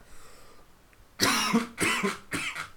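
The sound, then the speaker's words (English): A short coughing fit: three harsh, loud coughs in quick succession from a person choking on air, following a second of near silence. “Yeah, that, oh, you maybe guys I shouldn't have muted myself when I coughed.”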